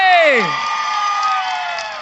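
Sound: audience cheering and applauding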